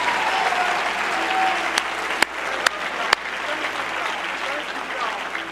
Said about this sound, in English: If you believe that, would you clap your hands in affirmation of what God is doing with this generation?